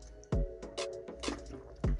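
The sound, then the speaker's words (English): Wet slurping and sipping of a fizzy Fanta drink, with small liquid clicks and two heavier gulping thumps at the start and end. No one speaks. “Sorry, I was taking a sip of my Fanta.”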